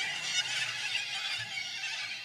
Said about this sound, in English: Okay. There go the birds.